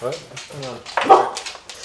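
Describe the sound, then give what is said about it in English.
A dog named Fox lets out a few short, excited barks and yelps in quick bursts, one louder and rougher than the rest, with no clear talking over them. “Guard dog against the clones.”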